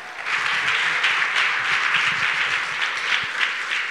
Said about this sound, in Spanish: So, darle la bienvenida, por favor. Un aplauso fuerte.